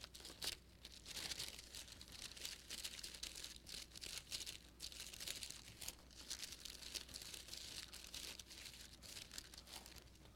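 Continuous papery rustling and crinkling as the pages of an old Bible are turned to Philippians chapter 2, with overlapping flips and soft crackles over about ten seconds, fairly quiet, with no talking.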